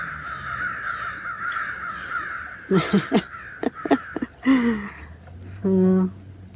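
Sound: crows cawing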